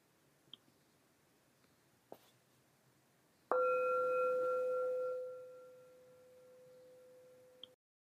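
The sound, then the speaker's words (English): A single meditation bell strike rings out with a sharp onset, then a clear, steady tone with bright overtones that sustains and slowly fades over several seconds in an otherwise quiet setting. It is rung once to mark a transition to group practice. “So as we continue to sit quietly, I'll ring the bell once to mark a transition to our group practice and explain that in a moment.”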